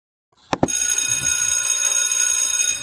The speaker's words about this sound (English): All right. It is the time. You heard the school bell. Get ready and come on in the classroom, so that we can start class.